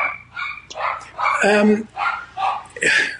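A dog barks and yips in a quick run of about six short, bright bursts, fairly loud, with a longer whining bark in the middle.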